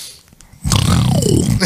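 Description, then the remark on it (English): After a brief quiet moment, a voice lets out one loud, rasping pig-like snore, a rough snorting grunt lasting about a second, imitating a snoring pig. “Your piggy snores.”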